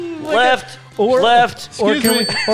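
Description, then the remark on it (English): A voice mimics the little bicycle bell of a ride-on luggage with handlebars, with three quick, bright, rising-and-falling bursts, fairly loud, ending in a thin, high ring. “Like a little bicycle bell?”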